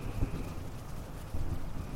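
Low thunder rumbles steadily through the whole stretch, faint and muffled, with a couple of slightly heavier swells along the way and no voices.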